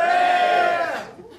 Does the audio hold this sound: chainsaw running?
no